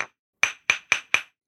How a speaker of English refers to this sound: No, it's a judge's gavel. Oh, order in the court. I thought that sounded like glass to me. I'm holding up the part you hit it on, so it probably sounds a little more hollow because I'm holding it